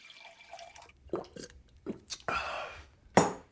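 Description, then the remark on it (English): Scotch is poured into a glass: a few soft splashy drips, then a steady trickling pour lasting under a second, ending with a sharp clink of glass. “Isn't this the scotch you nicked from my desk? Never mind, just pour it.”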